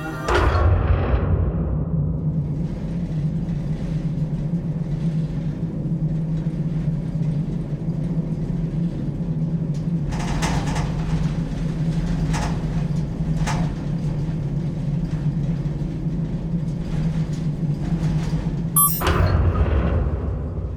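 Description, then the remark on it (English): A closet door swings open with a few scraping, clattering movements and a sharp knock near the end, all over a steady, loud low rumble like an idling engine. “The closet door swung open.”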